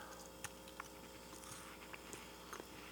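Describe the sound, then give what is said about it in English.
Soft chewing of a crumbly butter cookie, with quiet intermittent crunches and clicks scattered over a few seconds, no talking. “I wonder, can you hear me chewing it? It's much quieter chew than the crunchy espresso beans.”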